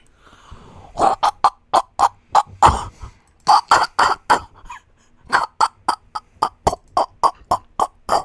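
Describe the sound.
A person imitating an aardvark with a rapid series of short, pig-like grunts and snorts, delivered in quick rhythmic bursts with a brief pause midway, loud and without any talking.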